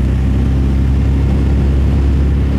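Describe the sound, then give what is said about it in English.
An MG sports car engine drones steadily from inside the moving car, a constant low rumble with muffler exhaust burble and road noise, loud and even throughout with no talking. “You want to hear your muffler system, where the sound of an MG has a very distinct sound.”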